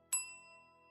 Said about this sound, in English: Just then the luncheon bell rang.